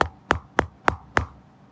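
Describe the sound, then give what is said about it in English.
Five sharp knocks on a door in quick, steady succession, fairly loud, with nothing else in the background. “It's a stormy night, and at 2 in the morning, you wake up to hearing a knock at your door.”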